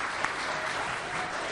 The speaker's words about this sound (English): But as of last Monday afternoon, it was just on scrap paper. This is what they were going to do. So I think give them a round of applause for that. Thank you.